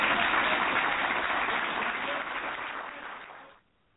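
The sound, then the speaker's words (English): A crowd applauds steadily, a dense, fairly loud wash of clapping that holds for about three seconds before tapering off quickly into near silence. “Oh, sounds like he's got a friendly crowd around him there.”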